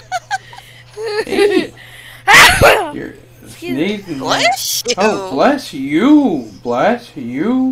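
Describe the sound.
A dog, Maui, who is being nursed back to health and given medication, lets out one sharp, explosive sneeze, while a person keeps talking in a warm, cooing voice before and after it.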